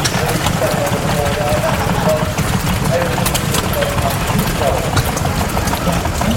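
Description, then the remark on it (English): Several old diesel and petrol stationary engines, farm water pumps in a collector's corner, chug and thump together in a steady, overlapping rhythm, loud, with faint crowd murmur in the background. “All engines, just amazing. Smell the diesel, smell the petrol. They're all sitting here just pumping away, and it's sort of, it's a real niche collector's corner.”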